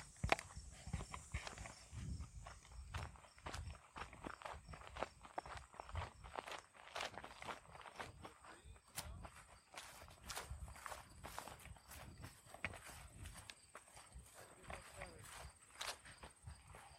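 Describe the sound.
Steady footsteps crunch along a woodland trail, a continuous run of sharp scuffing steps at a brisk walking pace, with faint murmured voices now and then beneath them.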